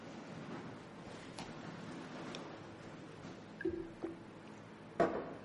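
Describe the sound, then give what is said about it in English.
Someone quietly drinks water, with a few soft sips and swallows and small clicks near the end over a low, steady background hush. No one speaks. “I'm just going to grab a drink of water.”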